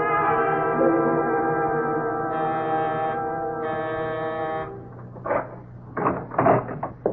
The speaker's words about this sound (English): Yes? I'm sorry to ring your bell this late.